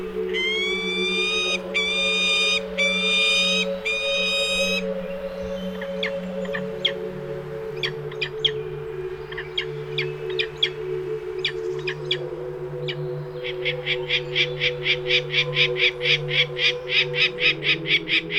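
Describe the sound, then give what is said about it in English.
A peregrine falcon gives rapid bursts of sharp, repeated harsh calls, with scattered single cries between the series, all over a steady low droning hum. “Well, our natural intelligent animal for the day is the peregrine falcon.”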